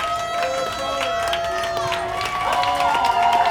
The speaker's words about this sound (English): Chris Tanev. Do we have an applause?